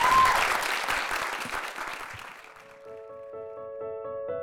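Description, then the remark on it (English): An audience claps steadily in a dense burst of applause that gradually fades after a couple of seconds as a sustained musical tone comes in and continues. “Big round of applause for Alec.”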